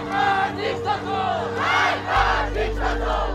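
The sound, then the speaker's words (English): A large crowd of street protesters in Tehran, Iran, chants slogans such as "Death to the dictator" together in loud, rhythmic surges, their massed voices rising and falling in repeated bursts over a steady low hum. “In the capital, Tehran, demonstrators chanted, "Death to the dictator."”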